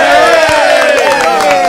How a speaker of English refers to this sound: I like coming here. You yeah. know, I get the applause. You yes. did. As you walked in there.